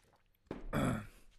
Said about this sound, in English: I need a sip.